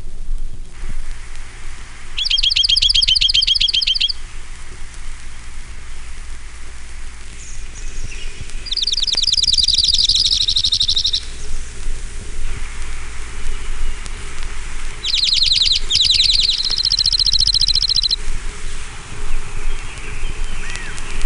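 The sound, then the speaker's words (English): Junco trills ring out in several rapid, buzzy bursts a few seconds apart, clear, over a steady hiss like light rain. No one speaks. “Junko. Nine examples.”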